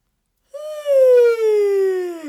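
A single long, voiced yawn: a loud, sustained 'aaah' that slides slowly downward in pitch over about two seconds, with no other sounds or talking around it.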